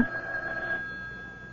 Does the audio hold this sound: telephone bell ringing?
yes